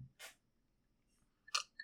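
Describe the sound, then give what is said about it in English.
Two short slurping sips from a can of Coke, separated by a brief pause, with a faint wet click at the end and no talking. “Sorry, I was taking a sip of my my Coke.”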